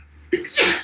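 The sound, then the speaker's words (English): A single forceful sneeze bursts out abruptly after a brief quiet moment, with a sharp onset and a hissy, breathy spray that trails off quickly. “Bless you.”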